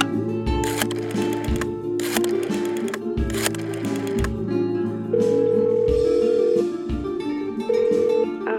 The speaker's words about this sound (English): Abdullah Akbar steps into his empty apartment. He drops his Halliburton suitcase of gear on the floor as the door swings shut. He takes a deep breath as he reaches for the phone.